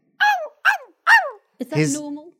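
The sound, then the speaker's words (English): A dog barks in the distance: three quick, high yelping barks in a row, then a lower, drawn-out bark that trails into a whine, fairly loud, with no other sound around them. “Well, it ain't barking like any normal dog.”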